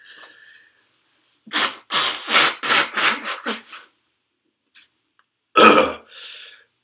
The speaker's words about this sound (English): Excuse me, I'm going to blow my nose again.